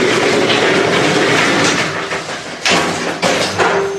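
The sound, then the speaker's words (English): An old elevator in an old military nuclear silo, going about 120 feet down, rumbles and rattles loudly and steadily, with a few sharp metallic clanks in the last seconds and a short squealing creak of doors that need oil at the end. “These old elevators are a little slow. Okay. Oh, these doors need some oil, some grease.”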